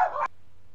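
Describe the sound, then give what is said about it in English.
A single short, sharp dog bark sounds, then cuts off abruptly into quiet with only a faint low hum underneath. “I guess the dogs, they were fans of the Edge and Undertaker match”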